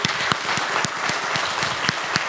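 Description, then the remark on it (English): A church audience applauds its standing volunteers, including this week's VBS volunteers: a steady, dense wash of many hands clapping at once, with a few sharper individual claps standing out, sustained and fairly loud throughout. “Church, can we give them a round of applause?”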